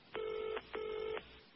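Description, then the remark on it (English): A telephone dial tone sounds in two steady electronic bursts, each just under half a second with a brief gap between, clear and moderately loud, with no talking. “Oh, hear that dial tone? Yeah, that's me.”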